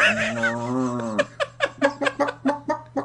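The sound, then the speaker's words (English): A long, drawn-out low moo sounds fairly loud for about a second, then gives way to a quick series of short, rhythmic laugh-like bursts. “Is that a cow in the background there, cow?”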